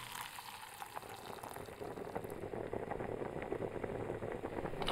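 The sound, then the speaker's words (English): A pot of water boils with a steady, crackling bubble that swells and grows busier after about a second as fresh pasta noodles are dropped into the boiling water. No one speaks. “drops the noodles into the boiling water”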